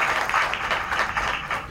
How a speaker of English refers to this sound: And if everyone would just give Cilla a big round of applause.